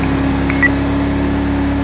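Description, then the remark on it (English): A steady, low engine drone fills the cabin of a Dodge Charger police car as it is driven like a sports car, continuous and fairly loud, with a brief faint electronic chirp partway through and no voices. “If anybody asks me why I'm driving a sports car like it's in a police car, while driving this police car like it's a sports car, it's because it actually technically is a sports car. I mean, it's a Charger, for crying out loud.”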